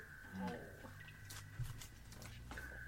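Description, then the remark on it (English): Water drips quietly at irregular intervals, a few soft plinks and splashes over a faint steady hum, with no voices. “Okay, I start to hear, like, dripping sounds, and I look around to see if there are any pools of water or something.”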